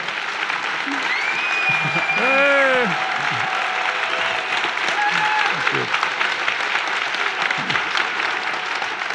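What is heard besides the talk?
audience applause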